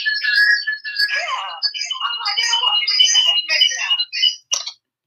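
A phone rings with an incoming call, its ringtone a bright, chirpy, high-pitched melody that plays steadily for about four seconds, then ends with a couple of short bursts.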